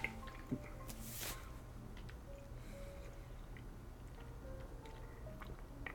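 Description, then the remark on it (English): A single short, soft slurping sip of whiskey, followed by faint wet mouth and swallowing sounds against a low, steady background hum, with no talking. “Here's a sip.”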